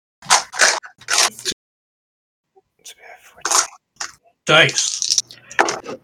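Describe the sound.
Dice clatter and rattle across a tabletop in several quick bursts, with short pauses between rolls and some soft, indistinct voices in the background. The dice are rolled for an attack of opportunity in a game.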